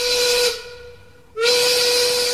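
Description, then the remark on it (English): A loud steam whistle signaling quitting time blows with a hissing, breathy tone, fades out briefly, then sounds again in a second strong blast. No voices are heard. “We don't control the whistle. Nope. But when we hear it, we have to yell quitting time and then we have to leave.”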